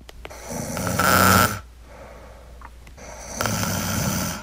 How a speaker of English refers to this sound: I have some tape of her snoring. Are you ready to hear it?